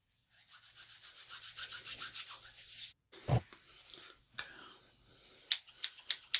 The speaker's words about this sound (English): Well, I think we've done the ASMR talk, because I have an ASMR haircut role play in the file for just talking sound effects.